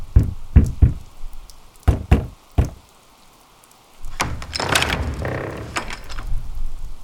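Five heavy knocks on the wooden door of an old church late at night, spaced unevenly over a few seconds, followed by a creaking, rattling door opening amid steady rain.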